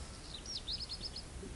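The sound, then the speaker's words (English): A bird chirps faintly outside, a quick run of high, thin tweets over a low background hum, with no one speaking. “You just know that there is a sound that gets interpreted as a bird, right?”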